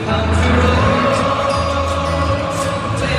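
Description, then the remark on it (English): A huge stadium crowd at an NFL game between Tampa Bay and Seattle in Munich, Germany, sings a popular song together at the two-minute warning, a loud, continuous wash of massed voices holding sustained notes with a roaring hiss of cheering over it. “This is apparently amazingly popular in Germany. This is the crowd.”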